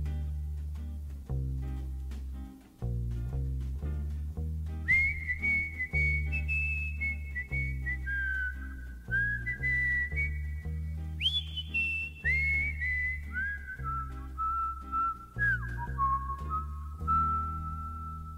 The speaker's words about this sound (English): Also, I feel like anybody who can whistle is just showing off. Especially whistling that well.